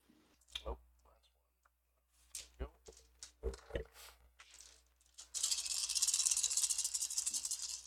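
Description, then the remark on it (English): Dice clatter: a handful of sharp, hard clacks at irregular intervals, then a loud, sustained rattle as the dice are shaken vigorously for several seconds. “How many dice that sounds like.”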